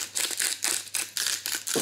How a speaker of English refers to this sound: As you can hear, I'm being extremely generous with the pepper as well. Gotta season the chicken really, really well.